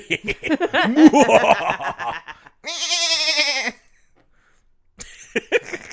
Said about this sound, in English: Goats can laugh too